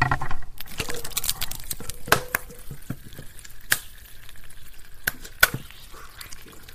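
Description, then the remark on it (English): Sharp crackles and pops burst irregularly from fizzing hot water in a beaker as a 500-year-old piece of ice melts and releases its old trapped air as bubbles, with quick clicks scattered over a steady low hiss and a few louder snaps standing out. “And with a bit of luck, you'll be able to hear the bubbles as the ice melt.”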